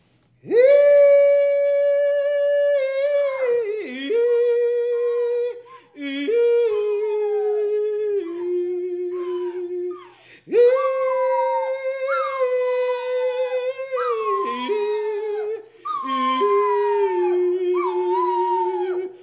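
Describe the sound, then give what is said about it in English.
A female dog sitting on a stage howls in long, wavering, song-like phrases, its pitch sliding up and down through about five drawn-out howls separated by brief pauses, with no talking. “Sally, you want to sing for these people? You guys want to hear her sing?”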